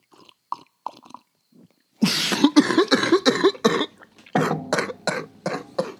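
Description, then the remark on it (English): A few faint slurps of coffee, then a sudden loud spluttering spit of the coffee followed by a run of harsh, choking coughs and sputters, with no talking. “just spitting coffee on everything, his notes.”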